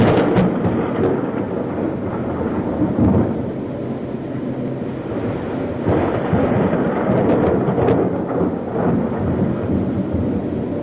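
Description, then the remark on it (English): A loud, steady thunderstorm fills the whole stretch, with deep rolling thunder rumbling continuously over a dense wash of heavy rain, swelling slightly in places. No voices are heard. “When God spoke to Job, he answered the mortal from a tornado. great storm.”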